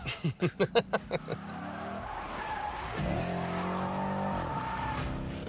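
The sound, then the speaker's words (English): A car engine revs in a quick series of bursts, then tires skid and squeal loudly as the car is whipped around for a stolen shot on the night Red Circle was filmed, the screech sustained for several seconds. “Nobody look, we're gonna whip a car around.”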